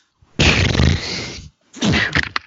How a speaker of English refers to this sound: Sorry, that was me sneezing.